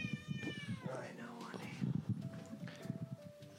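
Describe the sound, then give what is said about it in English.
A cat named Kirby meows insistently, a few drawn-out, rising and falling cries, with a person's voice murmuring underneath. “The cat is proving to be a real problem in the chat.”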